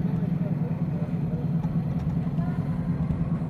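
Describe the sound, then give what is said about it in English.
A car drives with a steady, heavy low rumble of engine and road noise, continuous at an even loudness, with no clear voices over it, as the driver brakes hard and the tires burn rubber. “Hit the brakes and see if I can steer you through.”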